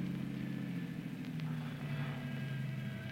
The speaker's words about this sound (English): It's plenty dark here, away from that street light. Might be this car coming.